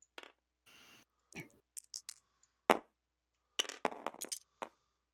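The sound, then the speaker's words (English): Dice are picked up and rolled, with scattered sharp plastic clicks and a brief clattering tumble. The sound is fairly quiet, and no one speaks. “Alright, hold on 1 second. I need dice.”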